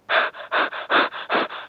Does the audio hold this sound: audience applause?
no